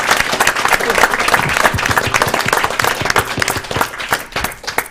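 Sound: audience applause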